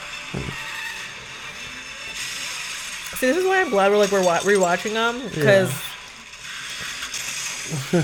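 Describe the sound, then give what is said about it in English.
Car-wreck sounds with crunching metal and glass and clattering debris play throughout under a steady roar, while a man talks over the noise in the middle. “We're just hearing like car wrecks and metal and steel and glass, and that's just like.”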